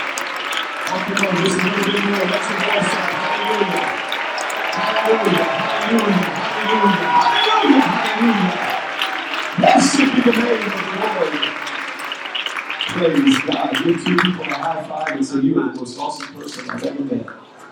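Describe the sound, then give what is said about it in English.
An audience claps steadily while many voices shout and cheer over it, giving the Lord a shout of praise, a dense, loud wash of applause and raised voices that dips briefly near the middle before surging again. “And everybody say, in Jesus' name, continue to clap your hands and let's lift our voice and give the Lord a shout of praise.”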